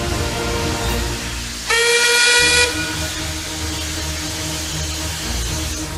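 An express train's steam locomotive gives one shrill, sustained whistle blast over a constant roar of hissing steam and low engine rumble, loud, with no voices, as clouds of smoke and steam pour from the engine's funnel into the cold air.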